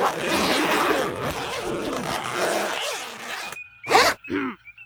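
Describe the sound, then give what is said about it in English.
Many zippers being zipped up at once, a dense rasping flurry lasting a few seconds, followed after a brief hush by two short, sharp zips. “Everyone zip up and shut up.”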